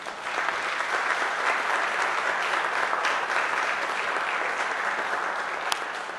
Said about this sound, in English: And why don't the rest of you give them a round of applause?